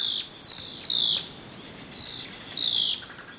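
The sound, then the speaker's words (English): A blue-faced ocellated antbird, clinging to a thin plant stem above an army ant swarm and waiting for flying insects, calls: a few drawn-out, high whistled notes, two of them louder and spaced about a second and a half apart, over a steady buzz of insects in the background. “Clinging to a thin plant stem above the fray, the blue-faced oscillated ant bird waits for flying insects to leave their hiding spots, then swoops in to catch them.”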